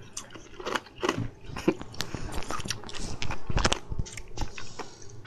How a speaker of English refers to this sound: Is this just going to be the basis of our show? We're going to eat ice? Yep. Ice is canon.